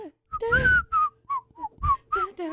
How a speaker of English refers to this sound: Listen to the Andy Griffith theme song and then tell me you hate whistling.